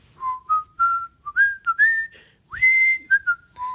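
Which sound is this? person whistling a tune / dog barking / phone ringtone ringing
person whistling a tune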